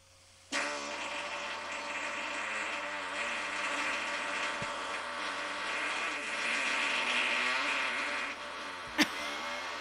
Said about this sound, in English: He's talented. That's real? That's a real fart.